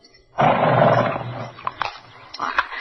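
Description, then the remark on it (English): A horse named Silver lets out a loud, rough whinny lasting about a second, followed by a few shorter, quieter snorting bursts, as it is being fed from someone's hand. No one speaks. “You see, you're really not afraid of horses at all.”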